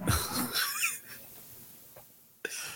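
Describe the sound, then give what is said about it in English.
A person with hiccups: a breathy, noisy burst opens with a short squeaky catch, then goes quiet before a faint click and one abrupt, sharp hiccup near the end. “I got the hiccups.”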